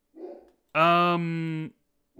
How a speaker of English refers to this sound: Uh-oh. Sounds like my dog's going crazy upstairs.